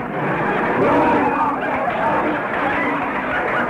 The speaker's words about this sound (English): listen to those people booing. What am I going to do? The audience is leaving for the other supermarket.